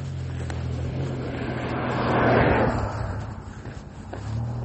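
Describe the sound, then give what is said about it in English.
A car passes by on a road in the morning, its broad tire and engine rush swelling to a peak midway and then fading, over a steady low rumble of traffic. “And quite a few cars actually this morning.”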